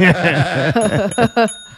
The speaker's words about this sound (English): When I ring this bell, you go get me something to eat. Three dings is ice cream.